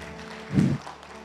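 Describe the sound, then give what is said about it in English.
An audience claps together after a prayer in a short, steady patter of applause, with a brief fuller swell in the middle before it settles back. “Why don't you clap it up”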